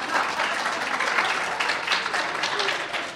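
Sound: audience applause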